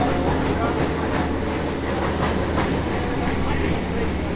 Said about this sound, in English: So that's the tram in the background for listeners. I'll pause while it goes past.